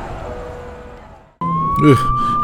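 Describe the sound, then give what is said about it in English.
A Charlotte PD police car siren starts abruptly with a steady high tone over rumbling engine noise, loud, with a brief voice-like chirp in the middle as the car peels off after people vault into its back seat. “They blast out the door where a police car is open, and they vault right into the back seat, and the car peels off.”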